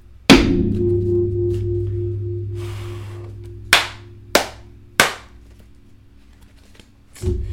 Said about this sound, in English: You get to listen to me shuffle throughout the entire process. So, at least you know what's happening.